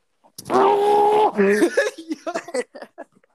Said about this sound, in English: I'm gonna scream as loud as I can into this towel.